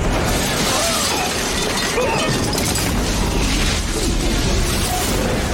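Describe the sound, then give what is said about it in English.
A building explosion from a film: a loud, dense roar of crashing and shattering debris that stays at full force for several seconds, with no voices over it. “Man, they were so slow to react to that explosion.”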